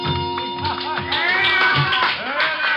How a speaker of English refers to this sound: Out in the center of the floor, a girl has just finished her dance. One look at her, and I can see why the ovation.